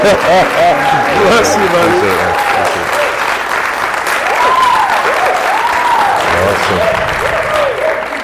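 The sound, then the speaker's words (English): Sustained, loud audience applause at Rock Revival Center, welcoming a guest speaker, fills the whole stretch, a dense wash of clapping with scattered cheers and rising shouted voices over it. “Give it up for him.”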